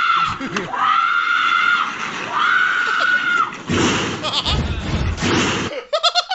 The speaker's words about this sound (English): The scream of, like, she knows.